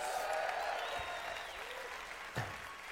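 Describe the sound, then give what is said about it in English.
An audience applauds steadily, a dense wash of many hands clapping at an even level for about three seconds, with a brief sharper burst near the end. “Let's give yourself a round of applause for that.”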